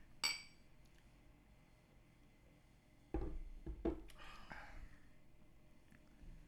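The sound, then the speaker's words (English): A sharp glass clink rings out, then after a pause one person pours beer into a glass held by another, with a fizzy, splashing rush, a couple of light clinks and a steady foaming hiss. “You've got no etiquette in holding a glass for somebody to pour you a beer.”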